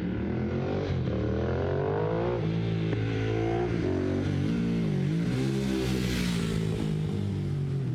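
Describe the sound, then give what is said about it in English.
A custom motorcycle powered by two BMW Boxer engines stacked on top of each other revs up and down repeatedly, its deep harmonic growl rising and falling in pitch, loud with no talking. “It's two of the, like, BMW Boxer engines kind of stacked on top of each other.”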